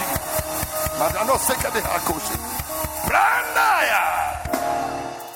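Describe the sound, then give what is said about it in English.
A church audience shouts, screams and whoops in praise of God over rhythmic hand clapping, with raised voices rising and falling as the clapping thins out toward the end. “Come on, somebody clap your hands and give God praise in the mighty name of Jesus. Anybody that can scream, the blessing of God is upon you in the name.”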